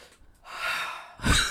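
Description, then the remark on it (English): Heavy, irregular breathing: a long airy exhale followed by a sharper, louder gasping intake, sounding strained and odd. No talking. “What are you doing over there? Breathing. Weirdly. Real weird.”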